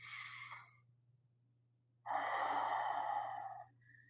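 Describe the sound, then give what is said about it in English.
Deep, breathy inhalations through the nose from hands rubbed with a few drops of a frankincense oil blend: a brief one at the start, then after a pause a longer, louder, rushing breath drawn in, over a faint steady hum. “And so what I like to do is apply a few drops into the hands, rub the hands together, take 3 deep inhalations.”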